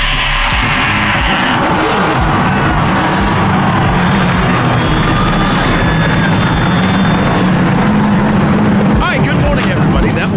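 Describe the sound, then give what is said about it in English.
A loud, dense roar of race car engines firing up together, with rising revs whining above a rumbling wall of noise and crowd din, sustained throughout. “And gentlemen, start your engine!”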